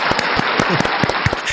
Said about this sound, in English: So, a little round of applause